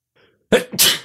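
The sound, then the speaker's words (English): A single loud sneeze: a faint breathy intake, then a sharp burst that bursts into a hissing, spray-like release before stopping abruptly. “And it was a sneeze.”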